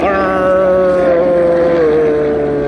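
A white and blue helicopter roars overhead, a loud, steady engine drone with a whining tone that dips slightly in pitch as it passes. No one speaks over it.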